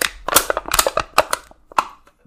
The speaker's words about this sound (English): Bang energy drink empty can roll.